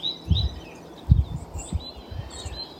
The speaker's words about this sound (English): Greetings to you, coming to you from the North Shore, Gitche'gami, the big lake, just taking in the joyful sounds of the birds.